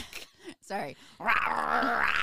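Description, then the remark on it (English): A person imitates a small dog, a Pomeranian, giving a few quick yappy barks before stretching into a long, high-pitched whining howl, loud. “Your dog impressions are great.”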